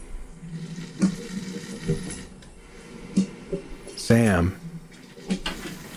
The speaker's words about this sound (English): That cavernous sound, easily confused with an iron lung, is coffee being brewed by a percolator. It predates automatic drip coffee makers. A percolator sounds like a small weather system.